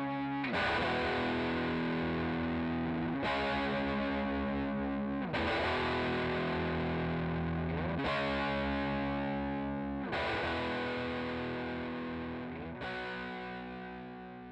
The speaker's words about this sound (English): There's also a heavy distortion guitar part at the end, but it's pretty low in the mix.